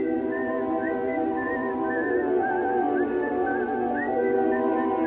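A clear whistled melody of a film theme, with sliding and wavering notes, rides over a steady, sustained orchestral backing at a fairly loud, even level, with no talking.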